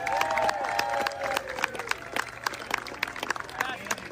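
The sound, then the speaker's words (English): A crowd at the Festival of Chefs in Orange County applauds the chefs, clapping steadily with scattered sharp handclaps, while excited whoops and cheers rise over the applause at the start and fade as the clapping carries on. “Big round of applause for all of our chefs.”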